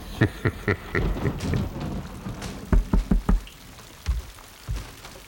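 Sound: rainstorm with thunder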